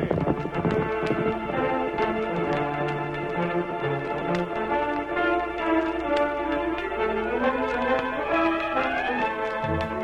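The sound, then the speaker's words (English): Galloping hoofbeats of the horses Silver and Scout, carrying their riders toward an Indian village, pound steadily beneath a loud, sweeping orchestral music passage, with no talking throughout. “Normally, a journey of 3 days, the racing hoofs of Silver and Scout carried their masters within sight of the Indian village in less than two.”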